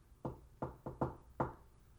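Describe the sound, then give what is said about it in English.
Five knocks on a solid surface in a basement in a distinct coded rhythm, with a quick pair in the middle, fairly loud with a slight resonant ring and no voices. “give me the secret knock one more time”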